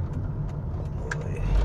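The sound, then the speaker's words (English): A big truck drives behind a car on the road, its heavy engine rumbling in a steady, deep drone over road noise, swelling louder toward the end. “Oh, man, there's a really big truck behind me.”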